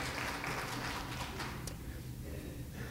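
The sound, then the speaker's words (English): An audience applauds, a dense wash of many hands clapping that holds steady for over a second and then thins out and fades. No one speaks. “You can clap. It's fine.”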